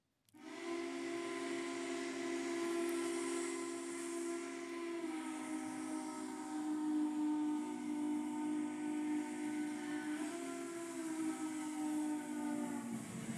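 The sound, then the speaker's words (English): A train whistle, played from a video, blows in one long, unbroken blast lasting over ten seconds, loud and steady with a breathy hiss, its pitch shifting slightly a couple of times. No one speaks. “I'm going to show you a train and make you excited about what we are going to be moving forward.”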